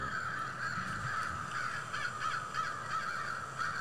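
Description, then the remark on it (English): A group of crows cawing over one another at night in a steady, raucous chorus, harsh calls overlapping continuously with no one speaking. “Bro, it's nighttime. Why are the crows out?”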